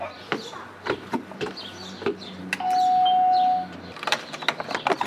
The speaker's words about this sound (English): Ooh, is that the sound of Harvard-educated birds? Yes. Yes, it is.